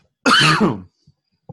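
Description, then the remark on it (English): A single loud, harsh cough bursts out, lasting just over half a second, followed by a couple of faint soft sounds like a small breath or throat noise. “Oh, I'm about to cough.”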